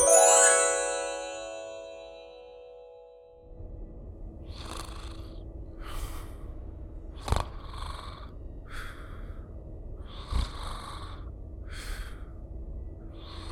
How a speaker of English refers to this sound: Your snoring kept me up.